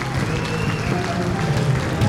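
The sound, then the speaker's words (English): A crowd applauds and cheers in praise of a band being present, a dense, steady wash of many hands clapping with voices calling out underneath, holding at an even, fairly loud level throughout. “And we give a praise for … being here.”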